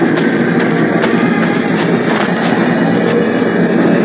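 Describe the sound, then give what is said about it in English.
A steady, loud mechanical rumble fills the space, like a train idling at a station, with faint clanks and hisses rising briefly through the constant drone. No voices are heard. “I just took my suitcases and walked to the train.”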